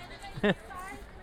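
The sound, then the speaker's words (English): A single short goat bleat, loud, with a harmonic, wavering tone against a faint background murmur. “Are we still, we're still herding the goats here?”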